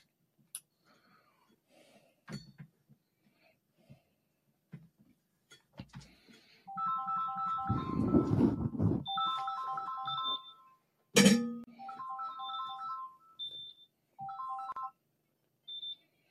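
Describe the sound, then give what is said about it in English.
A phone ringtone plays a short repeating electronic melody in several phrases, with a brief rustling burst near its start and a sharp click midway, then falls silent. “And I don't see her calling my phone.”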